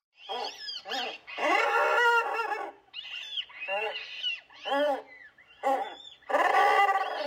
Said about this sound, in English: So this call, it has squeals of chicks, but then the main call is the trumpet of the adult.